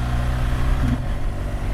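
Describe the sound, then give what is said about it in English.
Steady wind roars and buffets on a bridge separating Germany and Poland, a dense low rumble with a constant hiss above it and no pauses or voices. “All right, I don't even know if you'll be able to hear me over the sound of the wind.”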